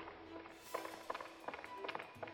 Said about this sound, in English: As the pursuit continues, Alice, growing ever more nervous at the sound of Arena's following footsteps, begins to hurry, and soon the two sets of footsteps begin to merge and blend, until the audience can no longer be sure that Arena is still